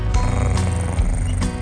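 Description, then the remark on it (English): A cat purring steadily, a deep continuous rumble that swells in a slow rhythm of about four breaths, fairly loud with no voices over it. “Purr for me, kitty.”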